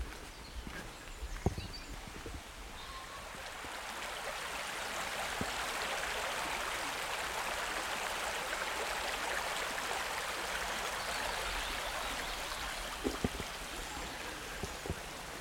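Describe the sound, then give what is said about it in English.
A steady, rushing babble of water from an upland stream full of moss-covered boulders, in oak and silver birch woodland on a hot day, flows throughout, fairly loud, with a few sharp knocks and clops breaking through near the start and end. No one speaks. “We've got oak and silver birch on one side, and then down to a stream on the other.”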